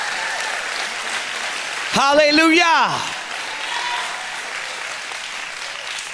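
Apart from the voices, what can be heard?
audience hand clapping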